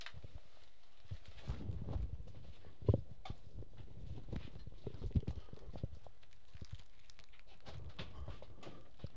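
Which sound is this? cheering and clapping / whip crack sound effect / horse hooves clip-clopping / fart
horse hooves clip-clopping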